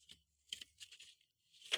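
paper rustling

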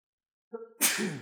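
sneeze

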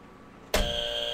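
buzzer

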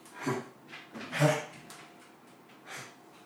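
dog

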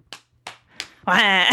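hand slapping a belly

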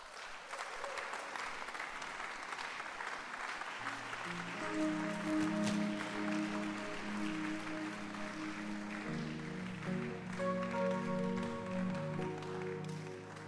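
audience clapping hands

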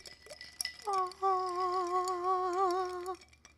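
drinking glasses clinking

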